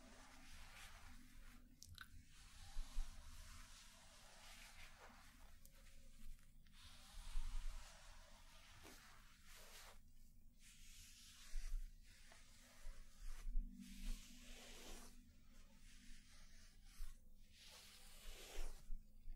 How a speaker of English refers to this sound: And again, I'm just going to use some fresh cotton pads to lift any of the exfoliant.